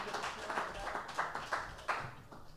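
An audience applauds, a steady, fairly quiet patter of many hands with a few sharper claps popping out now and then. No one speaks over it.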